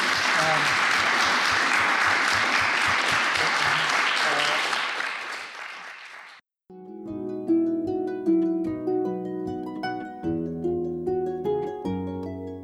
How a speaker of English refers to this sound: Thank you so much for sharing. Would you give me a little round of applause?